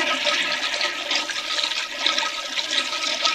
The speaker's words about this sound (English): Because I keep flushing and it just keeps doing the thing. It keeps going all over the floor.